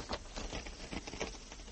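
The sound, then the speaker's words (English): Soft, rapid fluttering of an owl's wings flapping as it comes in to land on a person's head, a papery patter of quick beats with no voices. “There's an owl flying about. Oh, isn't he lovely? Look out!”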